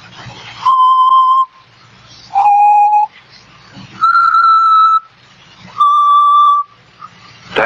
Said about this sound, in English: That song. Did you ever hear it before? Yeah. Bet you did. He's always whistling it.